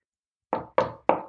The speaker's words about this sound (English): My brother knocked on the door frame and said, "You okay?"